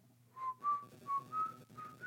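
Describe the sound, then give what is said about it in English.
Someone whistles a short tune of about five sustained notes, each rising slightly, clear over a low background hum. No one speaks. “Oh, quit that, whistling like a blowing viper.”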